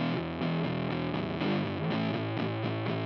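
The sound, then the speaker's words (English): A heavily distorted electric guitar plays a steady, chugging riff through an amp with the distortion side turned all the way up and the reverb all the way down, loud, with a thick, saturated buzz and no reverb tail. No voices. “Here's reverb all the way down, and then the distortion side all the way up.”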